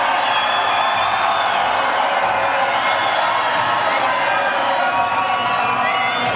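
A large crowd cheers and shouts as Connacht rugby player Pat Lamb steps first off the team bus, a dense roar of voices with whoops rising above it, loud and sustained throughout with no pause.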